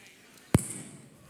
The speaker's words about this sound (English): It's like a super clap when I do that.